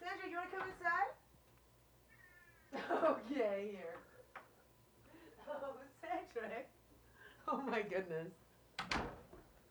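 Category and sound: animal, cat meowing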